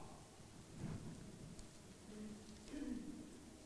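Steady rain hisses throughout while low thunder rolls and swells beneath it, rising twice into deeper rumbles. The storm sounds fairly quiet.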